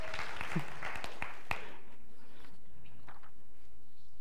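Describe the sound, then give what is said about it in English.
An audience breaks into a short burst of dense, overlapping clapping that lasts about two seconds, then quickly thins out and fades into quiet, with a few scattered claps at the end. “I don't understand, if I just said that person next to you is the image of God, why are you not applauding?”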